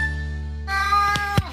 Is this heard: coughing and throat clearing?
no